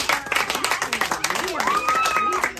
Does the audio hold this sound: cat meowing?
no